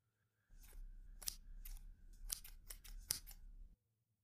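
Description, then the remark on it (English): Scissors snip through bandages being cut off a person's scabbed-over cuts in a quick, uneven series of about eight crisp cuts, fairly loud over a low rustling rumble, with no talking. “Yeah, we can take them off if you want.”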